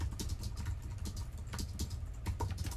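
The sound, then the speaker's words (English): Rapid typing on an Apple slim desktop USB keyboard that came with a Mac Mini, a steady stream of light, crisp key clicks, with a low constant hum underneath and no talking. “It's a beautiful little USB keyboard. It's what Apple calls their slim desktop keyboard.”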